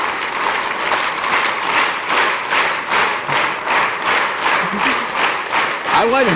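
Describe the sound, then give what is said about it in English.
An audience, asked to synchronize and clap together without any cues, claps in steady unison. Loud, sharp claps land together about twice a second in a regular beat, with a voice calling out briefly at the very end. “then I'm going to say, okay, everyone synchronize, clap together.”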